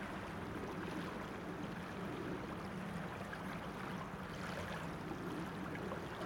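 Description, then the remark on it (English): The River Usk rushes steadily over stones at the water's edge on an autumn morning, a dense, continuous burbling and hissing that holds at an even level throughout, with no voices. “So I've come right down to the water's edge to get the song of the River Usk.”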